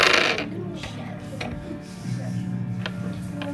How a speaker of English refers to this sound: All you need to know is that number, because I'm just rolling these 5 dice.